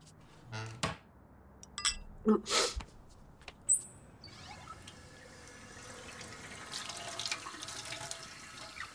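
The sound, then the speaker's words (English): A few sharp clunks and knocks, like handling a glass at a sink, then a tap turns on and water runs steadily in a soft, continuous hiss until the end. “Just need some water.”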